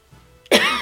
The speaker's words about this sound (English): Sorry. It's okay because I'm about to cough.